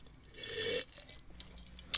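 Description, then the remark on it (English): A loud, airy slurp lasts just under a second with a hissy, sucking edge, then fades into quiet broken by a short sharp click near the end. No one speaks. “Not the slurp.”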